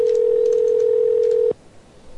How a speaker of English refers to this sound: I like the part of the show where the phones ring.